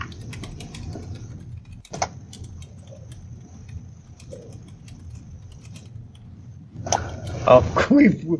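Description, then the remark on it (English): Scattered, irregular clicks of someone typing on a computer keyboard, fairly quiet over a low background hum, with a voice briefly speaking near the end. “We've switched from an active … to a strange noise. He's typing to us.”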